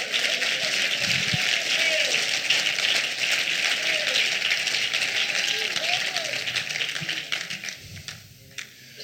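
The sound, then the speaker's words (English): A crowd claps their hands in sustained, dense applause as praise to the Lord for several seconds, with scattered voices and cheers mixed in, before the clapping thins out and fades near the end. “If you believe that, give the Lord a hand clap of praise.”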